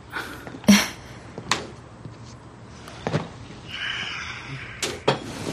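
Several sharp, smacking impacts like slaps ring out at irregular moments, the first the loudest, with a faint hiss and low rumble between them and no voices.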